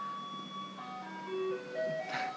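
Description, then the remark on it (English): A passing garbage truck's electronic jingle plays a simple tinkling melody of sustained tones over a low background rumble, with no one speaking. “Sorry, garbage car.”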